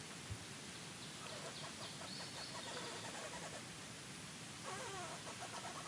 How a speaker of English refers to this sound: That's not a bird. The eucalyptus tree is singing.